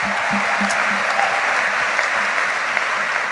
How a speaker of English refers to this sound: Let us clap our hands for all the pastors who are here. God bless you.